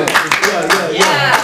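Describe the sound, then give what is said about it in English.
Several scattered hand claps from a live audience ring out at an uneven pace, fairly loud, mixed with a person's voice underneath. “Hand claps going on.”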